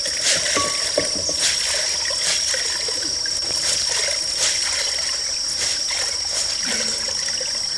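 Wet, splashing water work: fibrous sago palm pith is soaked in water and squeezed out like a sponge until almost dry, with steady trickling and dribbling punctuated by irregular squishy splashes, over a constant high-pitched outdoor drone.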